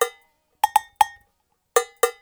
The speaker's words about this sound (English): … also added lots of percussion, including cowbells.